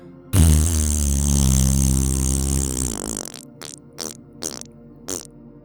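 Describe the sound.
A loud, buzzy raspberry blown during a class breathing exercise, lasting about three seconds, its pitch wavering and dropping at the end, followed by four short, softer sputtering bursts. No talking.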